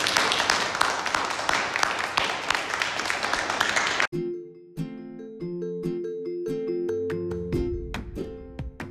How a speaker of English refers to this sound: But can we give Bishop Michael a big round of applause?